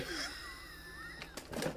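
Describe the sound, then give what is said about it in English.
A person yawns, a drawn-out breathy vocal sound whose pitch slides and wavers, ending in a couple of short airy exhales. “But I was yawning. This is my fourth time yawning.”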